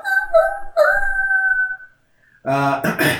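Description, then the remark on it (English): Long, wavering howls rise and sustain one after another for nearly two seconds, fairly loud and seeming to come from all around, in the buildings and on the ground, followed after a short pause by a rougher burst of voice-like sound. “And now you hear howls, but they're all, like, around you.”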